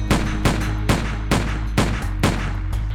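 Six loud gunshots fire in quick succession outside on a London street around 9:20 p.m., a steady volley of sharp cracks about half a second apart, each with a short ringing decay over a constant low rumble. No voices are heard.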